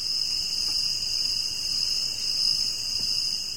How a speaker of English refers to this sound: I'll put the crickets in there.